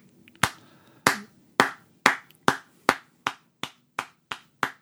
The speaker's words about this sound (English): If you could just drop in an applause sound effect right here, it would be amazing.